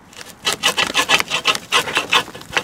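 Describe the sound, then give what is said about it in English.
An old streetcar's old-fashioned sliding door being forced along its track, scraping and grinding in a rapid series of rough, rasping jerks, roughly ten bursts in under three seconds, with no voices. “So it's got this these old-timey sliding doors. I wonder if they still open and close.”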